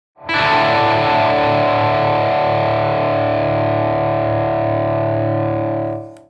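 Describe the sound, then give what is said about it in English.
A single heavily distorted electric guitar chord, a D chord shape with the middle finger lifted and the open E string ringing, sounds loud, sustaining thick and buzzing for about six seconds before cutting off, with no voices. “Yeah, I actually If you do get know rid of that middle finger and you just let that open E string and you have some just rich distortion.”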